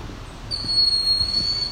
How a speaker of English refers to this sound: No, it is a bird or something, I guess. Making an alarm call. It's not some weird alarm someone's put in the forest.